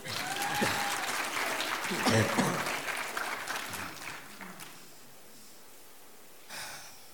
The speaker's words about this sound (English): You can clap.